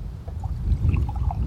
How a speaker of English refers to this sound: I'm just going to pour myself some more tea out.